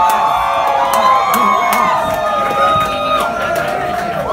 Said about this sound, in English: When Bernie Sanders pulled up in front in his Not Me, Us bus, the crowd started chanting wildly